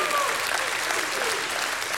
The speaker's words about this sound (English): Somebody in the house, give Him a hand clap and a shout of praise.